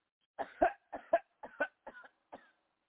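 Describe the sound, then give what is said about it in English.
A series of coughs, about five or six short harsh bursts in quick succession, each paired like a double hack, fairly loud, with no talking. “Deep breath and cough.”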